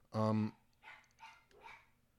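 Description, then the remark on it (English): A single loud dog bark rings out at the start, followed by quieter, muffled vocal sounds in the background. “Say hello to JoJo barking for absolutely no reason”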